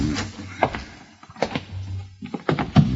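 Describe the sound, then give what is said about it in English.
A closet door is opened: a few dull thunks and rattling knocks spread over a few seconds, with a low hum running underneath. “Where does this door lead to? Closet.”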